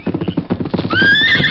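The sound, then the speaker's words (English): A horse's hooves clatter in a quick, galloping rhythm as it runs away from a stable, then a loud, shrill whinny rises over them and rings out for the final half-second. No voices are heard. “He's running away. Well, let him go.”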